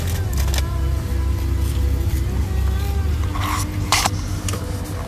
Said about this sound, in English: Anyways, this damn fucking trailer is so goddamn heavy. My truck's struggling over here to fucking pull it.